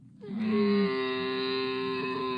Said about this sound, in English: No, what animal is it? Camel. Hallelujah. You're absolutely right.